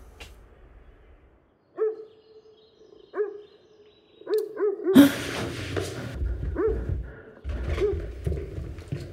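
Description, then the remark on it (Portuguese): A dog barks in short, yipping bursts, a few spaced apart and then a quicker cluster, before a rough, rumbling noise swells up with more barks scattered through it. “Mais um cachorro.”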